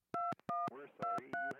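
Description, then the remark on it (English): A quick run of four touch-tone keypad beeps, each a short, clear double-pitched tone, as someone dials a woman's phone, with a brief murmur of voice blending in between and beneath them. “I tried all my usual methods to get in touch with my subjects. I called her phone.”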